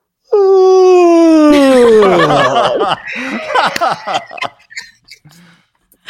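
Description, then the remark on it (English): A man imitates a long, loud yawn into a microphone, starting with a sustained high drawn-out tone that slides downward, then breaks into a shaky, trailing exhale with breathy fragments fading out. “You heard that yawn, y'all?”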